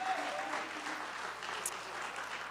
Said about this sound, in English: Would you please put your best hand clap together for Pastor Terry Wong?